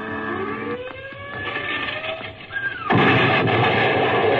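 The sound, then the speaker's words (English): Wartime rocket bomb explosions during an air raid: a rising whine and rumbling drone over a crackling din, then a sudden loud blast that breaks into a sustained roaring, hissing rumble. “Blast those jetties with their rocket bombs.”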